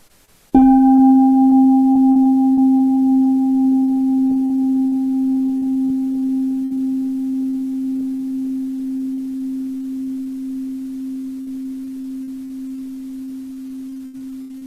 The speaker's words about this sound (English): Yeah, I'm going to put on original sound for a second, so I can invite the sound of the bell here.